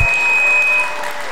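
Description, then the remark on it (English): A rapturous crowd applauds in a dense, steady wash of clapping, fairly loud, easing slightly toward the end. No one speaks. “As the birds took their bows before the rapturous crowd, the shell-shocked Lark cast a glance at Fox.”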